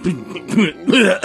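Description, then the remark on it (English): A voice imitates the sputtering, breaking-down sound that a DeLorean model car makes, with a few rough, throaty coughing bursts in quick, uneven succession, fairly loud. “I have a model car of the DeLorean, and it does that sound, but then it'll also do the sound when the DeLorean's kind of breaking down, just sputtering when it doesn't time travel.”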